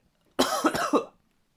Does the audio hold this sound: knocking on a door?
no